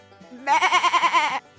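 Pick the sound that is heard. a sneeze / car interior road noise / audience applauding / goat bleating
goat bleating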